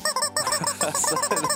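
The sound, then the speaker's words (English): A squeaky rubber chicken toy called The Crazy Chicken squawks in a rapid run of high, nasal honks, about eight pulsing squeezes over a second and a half, loud and with no talking. “We've added a new addition to the show. It's called The Crazy Chicken.”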